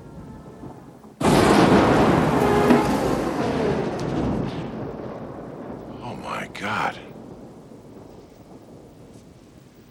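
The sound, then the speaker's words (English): A sudden, loud crack of thunder breaks out and rumbles on over steady, hissing rainfall, gradually easing; a person exclaims briefly partway through. “Real rain?”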